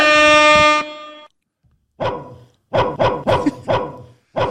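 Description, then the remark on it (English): A single loud, brassy air horn blast holds for under a second, then after a short pause comes a rapid string of sharp, rhythmic dog-like barks. “give me some horns and some Lulus and something else.”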